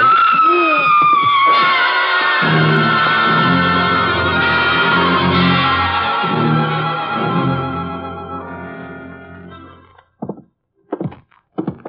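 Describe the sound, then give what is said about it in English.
A woman's loud, high-pitched scream in a house at night rises and wavers at the start, then gives way to heavy, sustained low tones that fade out, followed by a few faint thuds. “That was a woman screaming”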